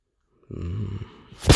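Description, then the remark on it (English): A man lets out a short, low, droning moan for about half a second, then it trails off into a loud breathy rush of air against the microphone. “I think he just moaned into the mic.”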